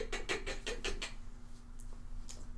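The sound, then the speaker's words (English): A rapid run of about six sharp, even clicks, like a car starter clicking, over a low steady hum. The clicks stop after a second, with a couple of faint ones afterward. “To be honest, you're gonna hear sort of like a starter on a car clicking.”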